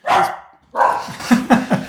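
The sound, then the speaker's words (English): A dog, one of two very excited dogs running around, barks excitedly, several loud, sharp barks in quick succession, the last few coming in a rapid rhythmic burst, with no one talking. “We might have to tell everybody here, there's two doggies running around who are very, very, very excited.”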